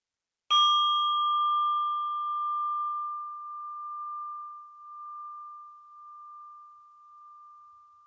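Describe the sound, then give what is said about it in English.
A single meditation bell is struck once to end a meditation practice, its clear bright tone ringing out and slowly fading over several seconds with a gentle wavering shimmer, heard alone in silence. “And I'm inviting the bell to end this practice.”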